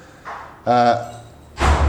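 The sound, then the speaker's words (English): A front door opens and shuts as a woman comes in: a soft bump, a brief tonal creak or voiced sound, then a fuller thud of the door closing about a second later. “oh look, I was hoping to finish this podcast without my wife coming in, but I can hear her coming in the door.”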